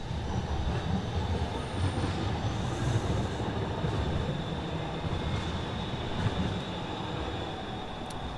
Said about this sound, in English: Hold on, train's going by.